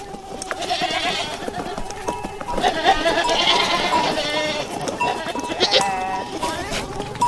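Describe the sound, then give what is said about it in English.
Several goats bleat and moan repeatedly in a documentary film soundscape with flies buzzing, their wavering cries overlapping over a constant low ambient rumble, with no one speaking. “This particular audio clip has flies buzzing and goats moaning, whatever goats do, and much, much more.”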